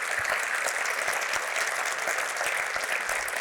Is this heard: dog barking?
no